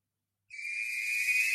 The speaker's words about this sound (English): You know, there's the really high-pitched whistle that everyone's going to hate there.